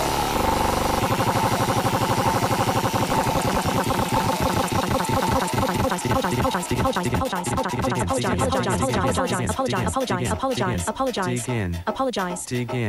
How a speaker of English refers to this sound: I've invented a randomised wheel that has both dig in and apologise on it. We'll take whatever stance it... And we can use the wheel going forward, I suppose. Dig in or apologise. Let's see what it says for the sea monkeys issue.